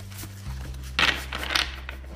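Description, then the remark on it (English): Tarot cards being shuffled: two quick, crisp papery bursts about half a second apart, with softer rustling between them over a low steady hum. No one speaks. “One more shuffle.”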